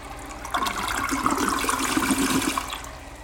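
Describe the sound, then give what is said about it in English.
A toilet flushes, a steady gurgling rush of water that swells quickly and keeps churning for about three seconds, with no voices. “All of this stuff that you're putting down the pipe, down your toilet, it goes somewhere.”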